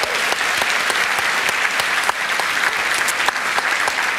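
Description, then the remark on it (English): Steady audience applause for the maker of the highest grossing Australian documentary of all time fills the whole stretch, a dense, even wash of many hands clapping at a constant loudness with no voices standing out. “So I think a round of applause.”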